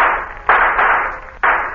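Three sharp shooting-gallery gunshots fired at a dummy target at uneven intervals, each a loud crack trailing off into a hissy, fading tail, with no voices.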